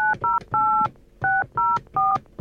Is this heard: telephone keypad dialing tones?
yes